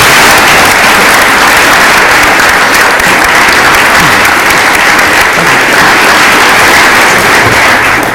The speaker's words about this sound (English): Awesome. Thanks, guys. Let's have a round of applause for everybody.